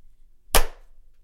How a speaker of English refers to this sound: Like clap, I'll probably be able to clap when you clap.